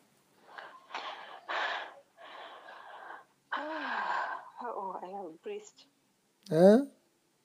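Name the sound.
heavy breathing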